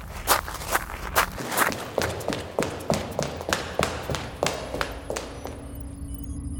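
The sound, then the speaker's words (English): Quick, steady running footsteps of someone running back to the lab, about fifteen sharp slapping thuds in an even rhythm, with no voices, fading to a low hum at the end. “Run! Back to the lab!”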